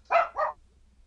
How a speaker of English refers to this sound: Sorry, my dog is freaking out, of course.